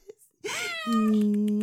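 animal, hungry cat meowing

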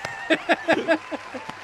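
crowd, cheering and applause

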